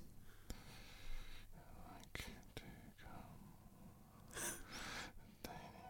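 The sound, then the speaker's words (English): Sharp, quiet clicks from a phone keyboard tap out irregularly, a few seconds apart, as someone types a text message, over soft breathy whispering and rustling. “I should put the sound on so you can hear.”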